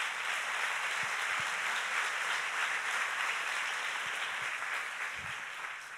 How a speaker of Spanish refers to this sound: Hay poder en la sangre de Jesús. ¿Cuántos saben que hay poder en la sangre de Jesús? Si lo sabes, dale un aplauso al Señor.